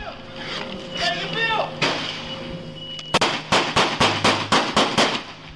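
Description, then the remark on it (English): Muffled voices and a shout give way to a rapid volley of about ten loud, sharp gunshots in quick, steady succession. This is fully automatic fire from a gun fitted with an illegal modification device, aimed at Houston police at an apartment door. “Moments later, you can hear a torrent of rapid gunfire.”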